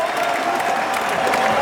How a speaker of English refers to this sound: And the crowd go crazy here.